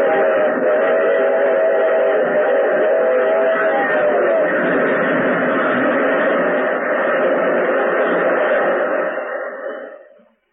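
A locomotive roars by, its whistle blaring in a long, steady blast over the rumble of the train for about ten seconds before the sound quickly fades away.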